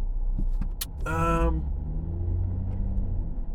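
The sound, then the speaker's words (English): A garbage truck's engine rumbles with a steady low drone, and a brief high, whining squeal rises over it about a second in before the heavy idling continues. “This is the garbage. This is the garbage truck.”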